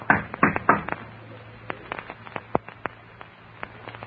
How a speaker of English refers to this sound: Shall I knock on the door for you?